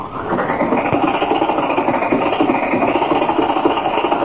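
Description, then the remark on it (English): An old car engine sputters and starts, then chugs and rattles with rapid, uneven putters, running loud at a steady pace throughout, with no voices. “Now, hold on, everybody. We're off.”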